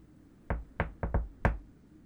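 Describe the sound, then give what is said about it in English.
Five firm knocks on a front door in an uneven rhythm, with a quick pair near the middle, solid-sounding with no talking; someone arriving as Santa Claus knocks at the front door on Christmas. “They're all in the front room, so I'm going to slip back inside the back door, and you go around the front and give a good knock.”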